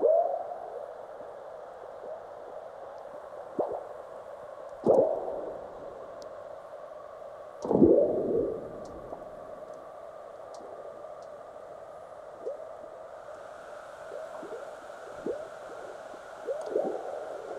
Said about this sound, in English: The sounds come from seismic recording stations in North America and Central Asia. Frog-like burps you could hear are earthquakes, large ones followed by the chirps of aftershocks.